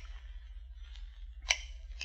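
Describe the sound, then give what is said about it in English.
Shears clip off small edges of gold coins, one faint cut followed by two sharp, crisp clips about half a second apart, over a low steady hum. “Here, they divested themselves of garments necessary to robbing on the road, placed them in a trunk, took out a pair of shears, and went to work.”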